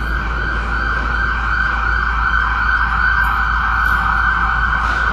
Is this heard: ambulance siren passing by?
yes